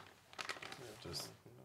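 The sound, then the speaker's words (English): A snack bag crinkles and rips open, a quick flurry of sharp crackling bursts followed by one brighter tear, with faint voices murmuring in the background. “He ripped it right before the good part.”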